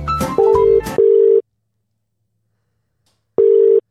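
A call placed from a yellow phone: a brief burst of dialing tones gives way to an outgoing call's ringback tone, two short steady beeps, a long silent pause, then the ringing starts again. It's loud and clear, with no voices.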